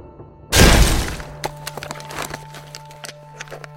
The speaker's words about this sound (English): The door smashed open, and there was Romy, just standing there, alone.